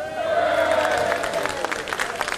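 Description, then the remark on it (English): City leaders and other attendees applaud steadily on a Tuesday afternoon as Enmarket Arena is announced as the name of the arena set to open in West Savannah. Many hands clap in a dense, crackling patter, with a murmur of voices and cheering underneath that eases slightly toward the end. “That was the applause from city leaders and others in attendance as Enmarket Arena was announced as the name for the arena set to open in West Savannah next year.”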